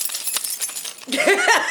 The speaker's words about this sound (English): Man, sometimes I walk around and just shake my keys because I can't.